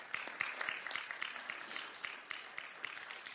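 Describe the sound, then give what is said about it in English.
A crowd applauds steadily, many hands clapping in a dense, sustained patter with a few sharper individual claps standing out. “Come on, put your hands together one more time.”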